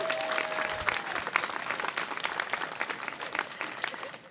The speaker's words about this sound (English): Now give yourselves a round of applause.